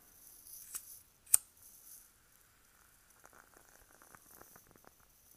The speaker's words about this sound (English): Instead of a string for the wick, it's actually a wooden wick. So you can hear all the crackling, and it's just got that wonderful, wonderful sound. So I'll go ahead and light it right now.